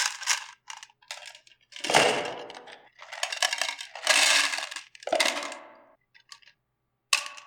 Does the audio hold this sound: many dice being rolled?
yes